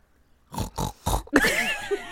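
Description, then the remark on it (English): A person imitates a pig, letting out three short, loud grunting oinks in quick succession, then a longer squealing snort with laughter-like warble trailing after. “I'm going to take that oink as a affirmation that you are ready.”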